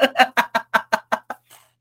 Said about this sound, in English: What if, look, we're knocking on wood right now.